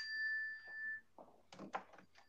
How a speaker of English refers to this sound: What the hell is that chime I just heard? That's the iPad text.